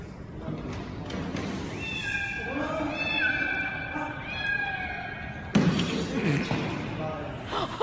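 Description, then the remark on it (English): A cat lets out a long, wavering meow that rises and stretches for a few seconds in a played video of a janitor saving a cat's life, followed by a burst of louder, rougher background noise. “Janitor saves cat's life.”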